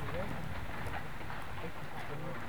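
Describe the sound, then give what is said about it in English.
Chunks of smoking hot volcanic rock rolling down the slope of Mount Pacaya, an active volcano, make a steady, dense clatter and rush, continuous and fairly even in loudness, with faint scattered clicks, almost like water running over a creek bed. “It is an active volcano, and what you're listening to is chunks of smoking hot rock rolling down the mountain.”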